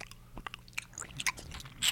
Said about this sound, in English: You hear me chewing? A little bit. Sorry. I'm eating boba, ladies and gentlemen.